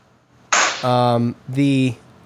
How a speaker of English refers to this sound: That one sounded like a gunshot. It sounded like a 22 going off.